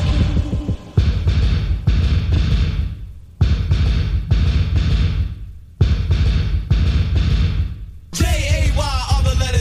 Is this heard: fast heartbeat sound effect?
yes